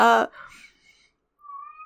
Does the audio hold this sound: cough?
no